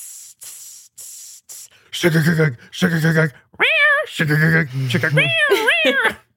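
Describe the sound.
A voice imitates a cat: a few short hissing bursts, then several loud, drawn-out meows with rising and falling pitch, fairly continuous.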